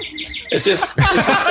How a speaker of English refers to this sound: tell that bird to shut the fuck up. If it's not a bird, it's a dog.